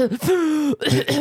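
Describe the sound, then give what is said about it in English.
A loud, strained throaty sound like coughing or hacking, with a short burst, a drawn-out voiced rasp, then two more rough bursts, seemingly a voice imitating a cough. “He was literally like coughing. He's coughing.”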